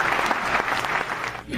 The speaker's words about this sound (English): That was a short clap.